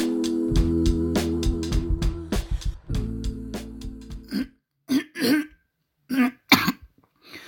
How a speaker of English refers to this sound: Person clears throat in a remote room, trying not to make it sound like a cough.